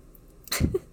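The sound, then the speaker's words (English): A single sneeze bursts out, a sharp hissing rush followed by a brief throaty sound, with quiet room tone before and after. “Bless you.”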